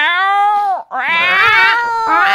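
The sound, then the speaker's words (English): A person's voice imitates a cat, giving two drawn-out, wavering meows back to back, loud, with a brief breath-like gap between them. “you got to say in cat language.”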